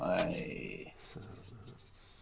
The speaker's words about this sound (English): So if you roll for your attack, keep track of any sixes you roll. Oh. Dear. I'll just roll. Weapon dice plus adds.